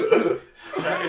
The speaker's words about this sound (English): It's just a little snort. It comes right out of my, you know.